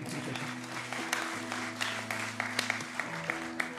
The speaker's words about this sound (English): Yeah, you can clap. It's all right.